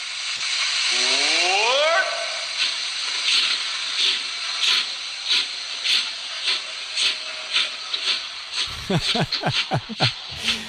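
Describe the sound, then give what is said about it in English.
A steam locomotive of the Walt Disney World Railroad at the Magic Kingdom, Disney World, hisses loudly and steadily at a station as it boards passengers, its hiss pulsing in a regular rhythm, with a brief rising whistle-like tone early on and heavier, booming chuffs near the end. “The Walt Disney World Railroad now boarding for a scenic trip around the Magic Kingdom.”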